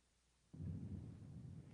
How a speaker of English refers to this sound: Ooh, the thunder and the desert waste.